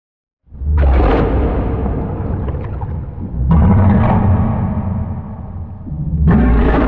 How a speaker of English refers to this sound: So let's add that Moria reverb to it and hear how that sounds.